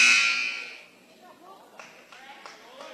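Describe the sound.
A referee's whistle gives one shrill, high-pitched blast that quickly fades, followed by a low murmur of voices and a few sharp knocks or squeaks.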